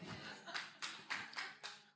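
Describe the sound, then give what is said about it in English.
Hands clap in a steady, unhurried rhythm, about six sharp claps over two seconds, soft with no voices. “Who's clapping?”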